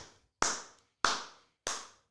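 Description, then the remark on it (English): Three slow, evenly spaced hand claps from a single person, each crisp, with a short ringing tail and quiet gaps between them; no one speaks. “Hell yeah, there should be more people clapping.”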